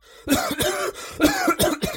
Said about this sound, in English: And he starts, like, coughing profusely. He's coughing so much that two doctors come in, one of which is smoking a cigarette, and they both rush over and they're like, please, please, we ask you to leave.